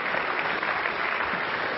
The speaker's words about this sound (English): Good morning, church family. Let's give our praise team a round of applause.